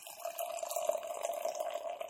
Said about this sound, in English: I'm very challenged with pouring beers that are that full.